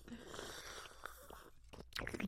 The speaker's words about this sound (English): Ew, slurping wine is so gross.